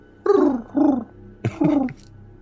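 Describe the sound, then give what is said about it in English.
A person's voice imitates a common wood pigeon call as the group's standard call, giving a few throaty, cooing hoots in a lilting rhythm, with two longer notes, a brief clipped one, and a final drawn-out coo. “The common wood pigeon.”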